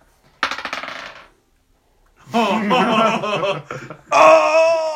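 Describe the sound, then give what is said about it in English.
A brief clatter of dice tumbling and rattling across a hard table for about a second, followed by people chuckling and talking. “That was a 13, but my pencil hit it. So. Roll again.”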